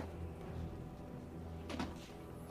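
Muffled scratching and scrabbling sounds behind a door, low and rumbling, with a brief sharper scrape near the end. Quiet, with no talking.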